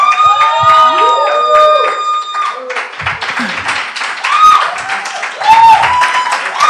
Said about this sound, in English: Number three, SGQ starts this Tuesday. It's a good place to clap and shout.